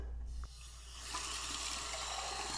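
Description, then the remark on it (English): Tap water runs from a faucet in Los Angeles, starting after a brief click and swelling into a steady rushing hiss that continues to the end. No one speaks. “what color is Los Angeles water today?”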